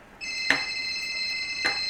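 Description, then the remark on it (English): A phone rings with a steady, high electronic tone that holds without a break, and two short sharp clicks cut through it. No one speaks. “Let it keep ringing.”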